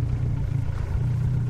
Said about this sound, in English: loading up his boat, a rickety plywood tub powered by a potent 115 horsepower outboard motor.